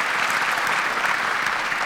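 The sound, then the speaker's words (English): An audience at a church claps steadily, a dense wash of many hands at an even, sustained loudness throughout, with no voices standing out above it. “So today we're going to talk about, yeah, you can clap, it's good.”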